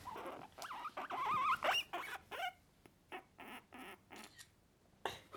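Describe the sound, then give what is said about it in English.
A guinea pig squeaks in a run of high, rising whistles, loud in the first half, followed by a series of short scuffling, pattering bursts with no talking. “I know, because you got the guinea pigs out.”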